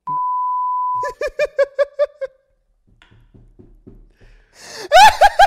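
A single steady censor bleep lasting about a second, covering something said that could not be aired, immediately followed by a run of rhythmic laughter, a brief quiet stretch, then another loud burst of laughing.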